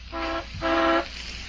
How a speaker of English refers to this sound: The horn of the school bus and a small female cyclone swept through the lower rooms of the house